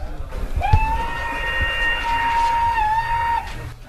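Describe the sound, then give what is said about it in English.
A model train's simple steam whistle sound effect, played from the model railway's controller while a steam train runs, sounds one long, steady note of almost three seconds, mid-pitched with a reedy edge, over a low mechanical rumble, then cuts off abruptly. “When we run a steam train, we have a very simple steam whistle.”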